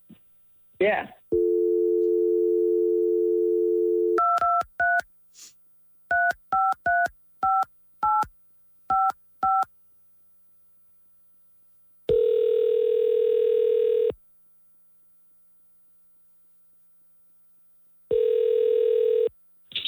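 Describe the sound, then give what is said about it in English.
A steady dial tone, then a quick run of about ten touch-tone beeps as a man's cell phone number is keyed in, followed by two long ringback tones separated by silence, heard clearly over a phone line. “All right, well, we have his phone number that you gave us, or his cell phone you gave us, and we'll call him now, and hold on 1 second.”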